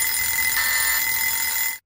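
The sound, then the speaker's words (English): A loud, steady electronic buzzer blares continuously for almost two seconds, a harsh tone with strong harmonics, then cuts off abruptly into silence. “Okay, you got your buzzer?”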